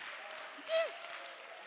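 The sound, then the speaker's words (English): An audience applauds in a steady, dense patter of many hands clapping, fairly soft throughout, with a short rising vocal sound briefly lifting above the clapping midway. “No, clap for me.”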